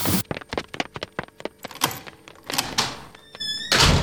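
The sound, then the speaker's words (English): A door thuds and bangs repeatedly in quick, uneven blows, fairly loud, followed by a brief high squeak and a final noisy crash. No one speaks. “Now, the door!”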